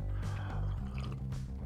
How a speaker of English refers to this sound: As I take a sip of coffee,